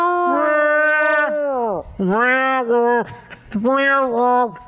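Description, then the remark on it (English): A person imitates a giraffe call with a hand over the microphone, three loud, drawn-out guttural vocal moans that swoop and waver in pitch, almost howl-like and camel-like, separated by brief pauses. “I put my hand over the mic, so it might be guttural and gross. Kind of camel-like.”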